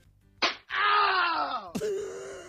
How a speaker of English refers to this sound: Ow! What's that? It's exactly what you heard. It's called slapping.